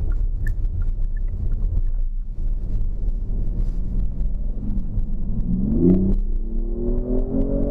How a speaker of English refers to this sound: Oh, as soon as you hit that accelerator, it just is off. You can definitely hear the V6 roar from that.